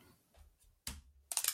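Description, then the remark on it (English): Dice being rolled: a sharp clack, then a quick rattle of several hard clicks as they tumble and settle, fairly quiet, with no talking. “Oh, I've got a dice here.”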